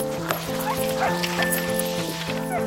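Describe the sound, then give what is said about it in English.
A pack of sled dogs, on a 500-mile caribou search trip by boat and dog sled, barks and yips excitedly, overlapping sharp calls and a few whines, with a steady tonal hum running underneath throughout. “They embarked on a 500-mile caribou search trip, traveling by boat and dog sled.”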